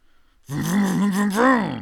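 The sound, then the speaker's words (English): A man's voice imitates a revving car engine, a loud, buzzing 'vroom' about one and a half seconds long, its pitch wavering and then swelling upward near the end. “We're talking about cars, guys, because I was making a little vroom vroom sound.”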